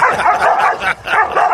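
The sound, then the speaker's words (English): Several dogs bark furiously and continuously through a fence at a dog on the other side, loud, their overlapping barks and yips blending into a frantic, nearly unbroken chorus with only a brief dip midway. “They know there's a dog on the other side.”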